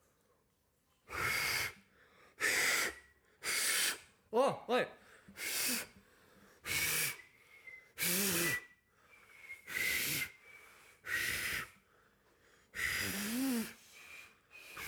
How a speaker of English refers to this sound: This is my attempt at attempting to whistle.